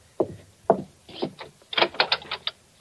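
Knocking at Mr. Fitch's front door: two firm, separate knocks, then a quicker, uneven run of raps, fairly loud, with no voices.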